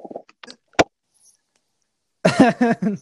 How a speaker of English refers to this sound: are you coughing off camera?